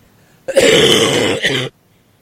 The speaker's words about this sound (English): This may not be a good idea. Let me try that again. Usually when I talk, I cough.